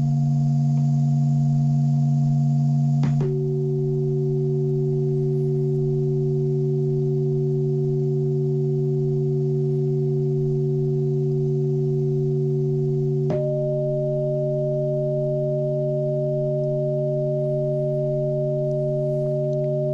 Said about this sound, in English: So anyway, those tones, they are one golden ratio proportion to each other. So we sent those out last night.